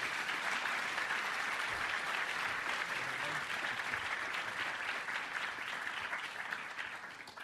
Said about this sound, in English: I give you Professor Arnie Westad. Give him a good cheer.